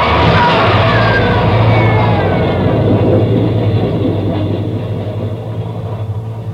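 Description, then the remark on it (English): A subway train roars loudly and continuously through a tunnel, a dense low rumble with screeching metallic squeals up high, slowly easing off toward the end. “there's a train coming through.”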